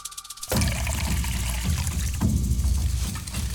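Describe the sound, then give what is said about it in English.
A sudden rush of water begins after a brief quiet moment, then keeps sloshing and trickling steadily as gathered evergreen leaves are dropped into a bowl of water. Fairly loud, with no talking. “gathered evergreen leaves and dropped them in a bowl of water.”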